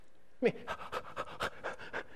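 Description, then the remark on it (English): A person imitates a dog's panting with a quick, steady run of about eight breathy huffs, moderately loud, with no talking over it. “I open my mouth and pant.”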